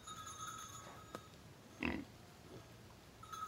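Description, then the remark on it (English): A small pig, Grunty Pig, gives a short, snorting grunt midway through, fairly loud, with a fainter snuffle after it over a quiet background. “Pig often told him, and then he would grunt, as if to say, "You don't need to urge me, just give me a chance."”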